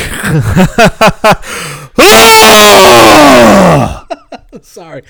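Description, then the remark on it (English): A voice imitates screaming while throwing up: a few short grunting bursts, then a loud, raw two-second retching scream that sinks in pitch, followed by brief choppy vocal sounds. “It's a scream throw-up.”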